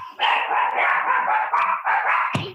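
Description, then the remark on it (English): High-pitched puppy barking and yipping fills the moment in a steady, overlapping stream, fairly loud, ending with a sharper yelp and a brief thump. “The puppies.”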